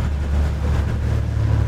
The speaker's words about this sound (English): his crew of three on the 43-foot G-Force are already heading out on the water for the day.